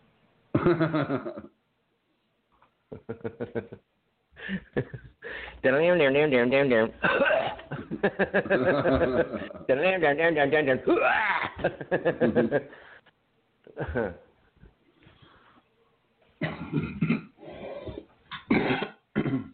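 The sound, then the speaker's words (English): Two people take turns coughing and clearing their throats in a long series of harsh, raspy bursts, some hacking and strained, with a few short pauses between the fits. “We could just do a show where we do dueling coughs.”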